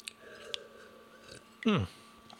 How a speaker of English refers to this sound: Pardon me, I'm already drinking beer. I'm going to have a sip.